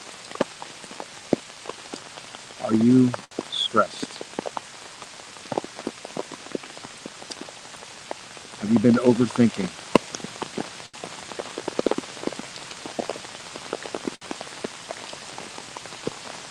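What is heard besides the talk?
rain falling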